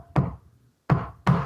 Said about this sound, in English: So you would have a front like a cigar store, and then you would walk to the back of the cigar store and you would knock like this.